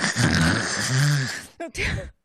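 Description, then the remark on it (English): A voice imitates a loud snore: one long, rough, rattling breath lasting over a second, then two short snorting bursts before it stops. “And from the table right near where Isolde was sleeping, you would not expect this from a teeny tiny person, but you hear the loudest snore.”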